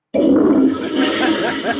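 A loud toilet flush bursts in suddenly and keeps going as a steady rushing, swirling roar of water for nearly two seconds, with no one speaking.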